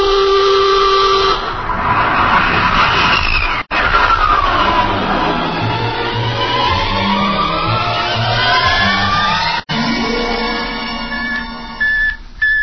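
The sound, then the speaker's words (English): A loud, continuous sci-fi rocket blast-off effect, with roaring noise layered under sweeping electronic whines and whistling tones that rise and fall, broken by two brief cuts to silence. “Bridge to engine room. Prepare to blast off on navigator's signal.”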